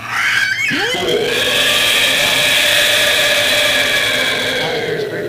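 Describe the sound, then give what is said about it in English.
A person imitates a wyvern's mighty roar: a loud, raspy vocal growl that swoops downward at the start, then holds a long, strained, gritty tone for about five seconds. “Unleashes a mighty roar.”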